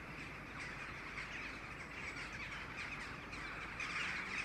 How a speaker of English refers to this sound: about 7:30 in the evening and the rooks are just starting to gather.